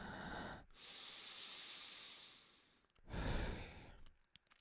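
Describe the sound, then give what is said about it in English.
Slow, deliberate breaths: a long airy inhale followed by a heavier, louder exhale, with a brief pause between them and no talking. “I need to practice breathing.”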